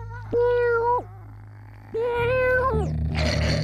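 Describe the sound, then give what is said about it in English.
A cat lets out two long, insistent meows about a second apart, loud, over a low steady hum, with a brief rushing noise right after the second cry. “The cat's protests became more and more intense.”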